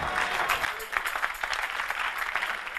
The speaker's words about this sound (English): If somebody is not clapping, you can tell what the person is doing.